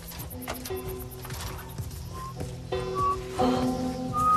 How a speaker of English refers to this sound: I'm whistling. Oh, good. Something else you can drive me crazy with.